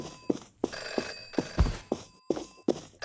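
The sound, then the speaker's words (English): A telephone bell rings continuously and steadily, its bright tone held throughout, while regular heavy thumps, like footsteps, land about every half second underneath. “There's a phone ringing”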